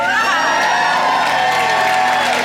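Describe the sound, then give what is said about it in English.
A church audience at a water baptism cheers and whoops loudly, a dense wash of many voices with high shouts rising over the sustained roar, continuous throughout. “And a whole cheering squad.”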